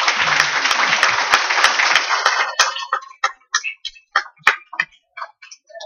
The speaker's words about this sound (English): I tell you what, let's give our online guests a round of applause.